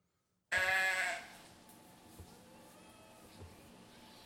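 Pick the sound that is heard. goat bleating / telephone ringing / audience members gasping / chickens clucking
goat bleating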